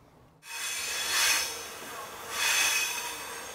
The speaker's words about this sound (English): We headed east on one of Ukraine's unstoppable night trains.